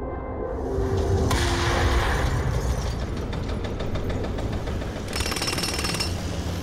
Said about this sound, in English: There were jackhammers and forklifts and rubble. The good kind of rubble that told you something was changing.